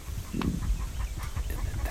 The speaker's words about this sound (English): That's a hen flying in. Cool. A female grouse flies overhead on her way to the lek.